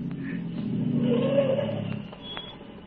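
A car engine rumbles along a road, its low hum swelling as it draws closer and then easing off slightly near the end, with no voices present.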